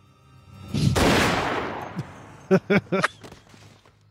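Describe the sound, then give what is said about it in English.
Video game gunfire erupts in a single loud, harsh burst that decays over about half a second as a character is shot in the head from behind, followed by a few short, clipped vocal sounds. “That was the weirdest headshot from the back I've ever seen.”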